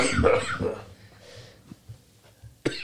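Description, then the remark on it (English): A raspy cough bursts out at the start, then a few quiet breathy sounds follow before a second short, sharp cough near the end. “One more cough.”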